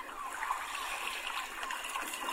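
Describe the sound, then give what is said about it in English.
Sea water splashes and washes against the shore of the coast in a steady, hissing rush with small bursts of spray, with no voices. “This episode comes to you from the coast, so join me by the sea”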